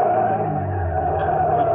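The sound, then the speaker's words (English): A car engine roars loud at night, its pitch climbing steadily as the car accelerates, pulls alongside another car and cuts it off, a continuous revving drone with no voices. “A car. It had come out of nowhere. It was pulling alongside, cutting me off.”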